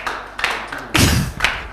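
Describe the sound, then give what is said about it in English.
An audience claps together in a dense patter of hands that swells to a louder burst midway, then eases off. No one speaks over it. “I don't want you to clap off what is happening.”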